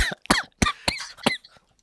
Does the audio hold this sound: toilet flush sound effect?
no